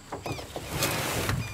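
A small boat is shoved off into water at dusk as fog comes in: a few short scraping, splashing knocks give way to a steady rush and slosh of water as the hull slides free.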